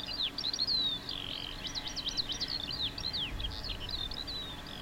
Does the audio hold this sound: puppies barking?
no